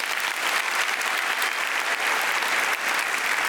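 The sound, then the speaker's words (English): An audience at an evening event applauds its Platinum patrons steadily, a dense wash of many hands clapping at a constant loudness for a few seconds with no voices heard. “And as that applause dies down, think to yourself, I too could be a Platinum patron.”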